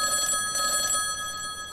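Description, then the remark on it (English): A public phone terminal's bell rings insistently and without pause, a bright, steady metallic trill that stays loud throughout, with no voices. “There's this bell that's ringing insistently, and for some reason, it seems to draw you towards it.”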